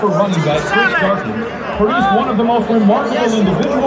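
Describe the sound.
Stadium crowd noise at a Gophers football game against Nebraska, with about 30% Nebraska fans: a dense, steady wash of many overlapping voices chattering and murmuring at a constant, fairly loud level, with a few individual voices rising briefly above the din.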